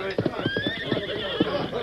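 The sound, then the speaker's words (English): Two horses whinny loudly and urgently, shrill rising neighs layered over a low rumble and thudding, struggling movement in a brief, tense burst, as they strain while stuck knee-deep in soft, oozing quicksand. “the soft, oozing mire of the quicksand gripped the horses of Tonto and Jeff Hollins even more firmly”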